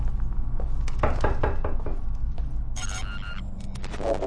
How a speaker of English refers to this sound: Fine, I'll knock on your goddamn door. Knock, knock. Who's there? No, that was just me knocking on your door, giving you the sound effect to get the ball rolling.